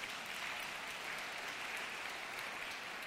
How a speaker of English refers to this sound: Yeah, that's a clap moment, I think.